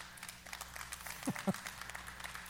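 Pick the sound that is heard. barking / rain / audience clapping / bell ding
audience clapping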